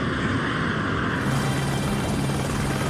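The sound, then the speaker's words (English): A helicopter, flown by a film star piloting it himself to a red carpet on the USS Midway, roars with a loud, steady wash of rotor and engine noise that fills the whole stretch with no voices over it. “it turns out Tom Cruise is just flying his own helicopter to the red carpet as opposed to being in a limo”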